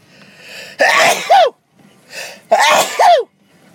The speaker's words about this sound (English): I'm not going to lie, I tried to pause that, but I didn't hit the button, so you get to hear my dramatic-ass sneeze.